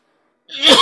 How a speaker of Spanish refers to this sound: Miren lo que me está pasando ahora, pues estaba todo tan bien y de repente la tos me empezó a molestar. Y aquí estoy tomando un dulcito otra vez, porque como que me estoy quedando afónico.